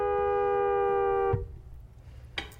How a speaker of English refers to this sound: So one of the dads closes the car door, and immediately the horn starts beeping and won't go off.